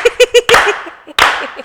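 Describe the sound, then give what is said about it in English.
Slow, deliberate claps, two sharp hits spaced well apart, each trailing off, preceded by a quick run of four short, evenly timed tonal blips. “Can we slow clap you?”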